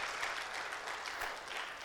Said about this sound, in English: Dale un aplauso fuerte si se lo vas a dar. Give the Lord a clap offering if you're going to give it to him.